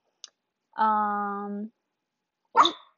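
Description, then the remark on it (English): A dog barks once, sharp, after a drawn-out tonal whine and a faint click, with quiet pauses between the sounds. “Sorry, if you couldn't tell, I'm talking to Jonas.”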